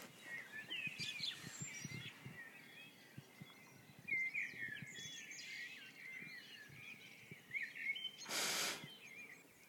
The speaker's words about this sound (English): But the birds don't know that it's still time to be quiet. Maybe if I take you to the window, you'll be able to hear them.